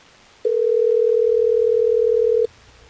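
A single steady telephone tone, like a dial tone or one ring on the line, as Hot 101.5 radio hosts call a listener, holds loud and even for about two seconds before cutting off, with no voices.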